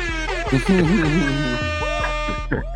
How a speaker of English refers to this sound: All right. One more air horn on that one.